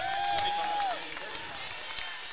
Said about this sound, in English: As the subs come in, and a nice round of applause there for Greathouse and Villarreal, as Monroe tries to add the and one.